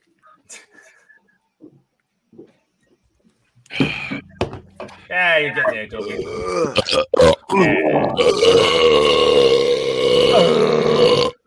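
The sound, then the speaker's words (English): After a few quiet seconds and a countdown of three, two, one, several people let out loud, drawn-out burps at once as a goodbye, overlapping and croaking, with one final long belch trailing to the end. “I didn't have a beer, so I couldn't do as good of a burp.”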